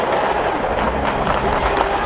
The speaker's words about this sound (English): Kansas City police confirming at least one person has died and several more injured. The gunshots captured on video.